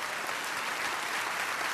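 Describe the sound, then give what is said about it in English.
A church audience applauds steadily for the Lord, a dense wash of many hands clapping at even loudness throughout, with no voices standing out. “Let's clap for the Lord.”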